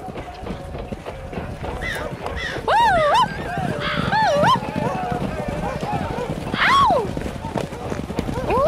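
The hooves of a horse ridden out to stop an enemy attack gallop in a fast, steady pounding rhythm throughout, loud and continuous, while several high, wavering cries rise and fall above the hoofbeats.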